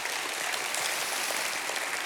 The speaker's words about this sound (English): Anyone agree? Give God a hand clap of praise.